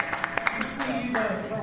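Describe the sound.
A short patter of scattered audience hand claps at a panel discussion, several quick sharp strikes in the first half-second, fading as a voice takes over and continues talking.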